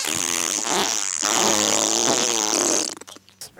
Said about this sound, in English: And back then, people did like to have farting and burping things. Yep, back in the days. Back in the day. And these farts, man, there's a lot of farts.